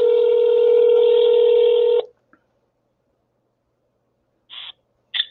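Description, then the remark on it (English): A steady telephone dial tone hums for about two seconds, then cuts off; after a pause, two short electronic tone bursts follow, like a call being dialed and starting to ring. “Let's call him up and see what we got. Ringing it up.”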